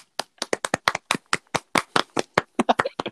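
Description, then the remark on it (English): A quick run of about twenty crisp hand claps in an uneven, lively rhythm with no talking over them. “Is clapping our thing now?”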